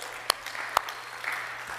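Light, scattered applause from a small audience: a soft wash of clapping with two sharper claps standing out early on. It's fairly quiet, and no one speaks over it.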